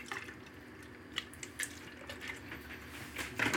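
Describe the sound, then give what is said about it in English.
Milk is poured into a container to be blended, in a steady, splashy trickle with a few brighter gurgles and drips, growing slightly busier toward the end. No one speaks. “So I'm going to add my milk into here and buzz that.”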